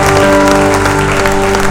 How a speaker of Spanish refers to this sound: ¿Alguien puede dar un aplauso al Rey de Reyes, señores, señores? ¿Alguien puede dar un aplauso más fuerte al Rey de Reyes y Señor de Señores?